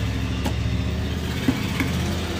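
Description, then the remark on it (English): A vehicle engine idles with a steady, low rumbling exhaust drone, continuous throughout with a couple of faint ticks and no one speaking. “I think some of these work on their exhaust system.”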